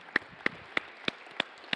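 Congregation applause for the deacons comes through as about six crisp, evenly spaced claps in a steady rhythm. They are fairly soft, over a faint background murmur, with no one speaking.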